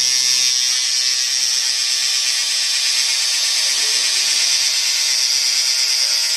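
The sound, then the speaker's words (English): Electric hair clippers buzz steadily for the whole stretch while cutting a dry razor line in a haircut, a loud, even, high-pitched whir with a faint low hum beneath and no talking over it. “Today we're just doing a dry razor line.”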